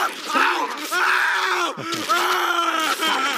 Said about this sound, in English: Good Homer screams, though.